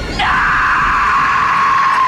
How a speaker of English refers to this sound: And he's like, I command you to give me your name, demon. And then she starts screaming.